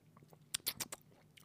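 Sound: sipping bourbon whiskey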